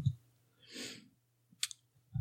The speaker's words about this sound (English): I'm trying not to type because I have a mechanical keyboard, and it's obnoxious.